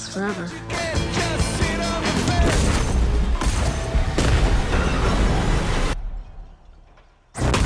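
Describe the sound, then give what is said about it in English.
A loud, rumbling explosion from a Netflix film trailer about a train derailment spilling chemicals, with a dense, roaring low end that sustains for several seconds, mixed with faint voices, then cuts abruptly to near silence before another loud burst kicks in. “So, train wreck or a train derailment, wreck, explosion, chemicals all over the place.”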